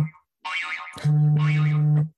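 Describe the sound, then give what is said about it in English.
A timer goes off during a question-and-answer game: a short warbling, boing-like sweep followed by a loud, steady low buzz that holds for about a second, with no talking over it. “You don't have to answer a question if the timer goes off when you're about to answer it.”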